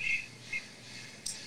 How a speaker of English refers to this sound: I don't live in the jungle over here, but my neighbor does have a parrot over there. Tell that parrot to shut the fuck up. That parrot's going off.